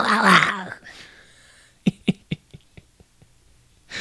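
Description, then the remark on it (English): A man lets out a loud, raspy roar imitating a panther, in reference to the Carolina Panthers' offseason, lasting under a second, followed after a pause by a quick string of sharp knocks that grow fainter. “Coming in roaring like a panther, right?”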